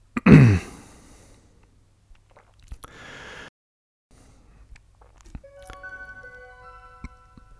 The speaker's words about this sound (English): That's the new clock.